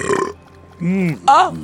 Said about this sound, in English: The moment it hits the bowl, it burps. Not even having to consume it, just it hits the bowl, and Mr. Soup feels fully full